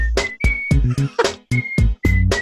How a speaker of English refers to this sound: And then whistle solo.